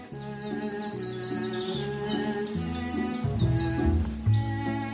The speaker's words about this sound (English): My parents have never heard the sound of the birds or the rustling of the trees or the purr of their cat.